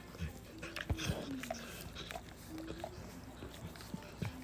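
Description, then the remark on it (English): A puppy named Ace makes soft whimpers and little whiny vocal sounds in short, scattered bursts, fairly quiet against faint background noise. “You're a cute puppy.”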